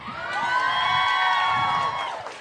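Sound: audience cheering and clapping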